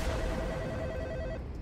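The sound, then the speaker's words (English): A single ring of a telephone on an outgoing call to the sheriff of the Screven County Sheriff's Department: a steady electronic ringback tone holds for over a second and then cuts off, heard alone over a faint low hiss. “I grabbed my phone and called the sheriff.”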